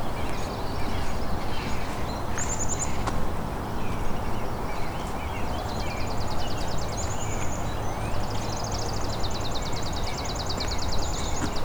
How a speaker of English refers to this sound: So we got a chipping sparrow here. Doing the trill.